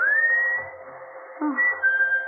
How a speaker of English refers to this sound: …'s whistling for you. Answer it, dear.